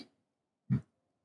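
A single short, gruff bark from a female dog sounds once in the middle, with near-silence around it and a faint trailing noise at the very start.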